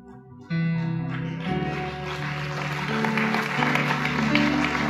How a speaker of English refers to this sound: Are they clapping because you're the only one brave enough, or I'm not sure?